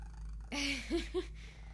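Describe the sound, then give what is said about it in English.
Air Force, a cat lying in a lap and being petted, purrs, breaking into a short rising trill and then two brief chirrups, soft and intimate against a steady low hum, with no voices. “If you could see my cat right now, her name is Air Force. She is in my lap like a baby.”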